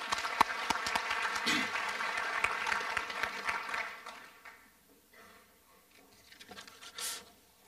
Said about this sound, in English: Let's give them a warm round of applause.